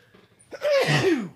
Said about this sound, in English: Bless you. And then I sneeze.